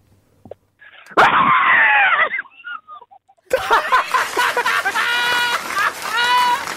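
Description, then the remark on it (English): Loud, muffled screaming from several people inside a car with its windows up, dulled as if behind glass, breaks off briefly, then returns as clearer, high-pitched shrieks and wails that carry on to the end. “Because I reckon I could hear their screams through the window.”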